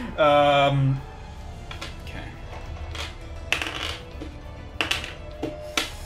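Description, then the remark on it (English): After a brief loud tone at the start, dice clatter across a table in several short, separate rolls, each a quick burst of hard clicks, fairly crisp. “That's like a dice roll, another dice roll, another dice roll.”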